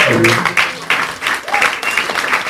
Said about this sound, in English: Ladies and gentlemen, give him a round of applause here.